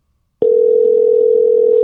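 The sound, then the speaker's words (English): A steady, continuous telephone dial tone starts abruptly after a brief silence and holds at an even, fairly loud level with no breaks or talking. “To make a phone call, actually.”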